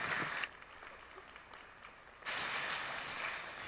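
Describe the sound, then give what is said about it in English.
An audience breaks into steady applause for the day's speaker, a dense wash of many hands clapping that dips briefly in the middle, then swells back up loud and sustained. “So do me a favor again, if you don't mind, give us a round of applause”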